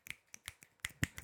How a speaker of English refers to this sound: Everybody snap your fingers.